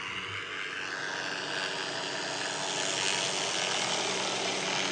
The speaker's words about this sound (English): You know what that is? It's a helicopter. Yep. In my backyard.